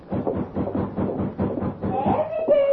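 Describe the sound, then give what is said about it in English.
A quick, steady run of knocks on a door, about eight even raps in a row, moderately loud, followed by a brief high tonal sound at the end. “The girl's reverie was interrupted by a rap on the door.”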